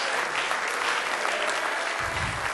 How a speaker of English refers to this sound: Amen. Clap their hands. Worship God.